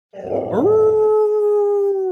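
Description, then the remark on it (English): A female dog lets out a long, loud baying howl, starting with a rough, noisy yelp that rises and settles into a sustained, steady wail held for nearly two seconds. “Dogs baying is so great.”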